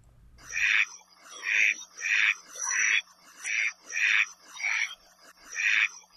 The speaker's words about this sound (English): And today we're hearing from the Koloa Maoli, Hawaii's endemic duck. These quacks are brought to you by Zeno Kanto and the University of Hawaii at Hilo biology professor Patrick Hart.